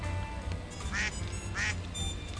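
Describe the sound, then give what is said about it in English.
A duck quacks twice, two short nasal honks about half a second apart, heard over a steady low background rumble with no talking. “Just time for a duck.”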